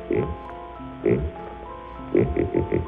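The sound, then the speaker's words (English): A buzzy, synthetic vocoder voice imitates a pig, the kind of animal-noise novelty made for crowds at the 1939 World's Fair: one oink at the start, another a second later, then a quick run of four short snorts near the end, all harmonic and nasal-sounding. “It started its public life as a silly novelty gag, making animal noises for crowds at the 1939 World's Fair. And here's a pig.”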